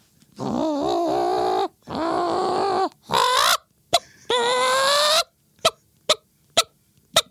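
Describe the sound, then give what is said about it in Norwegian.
A person imitates a clucking hen: a few drawn-out, wavering squawks, then a run of short, sharp clucks at a steady rhythm. The voice is loud, with no talking. “For det er ikke sånn, det er ikke et menneske som lager hønelyd, det er høne.”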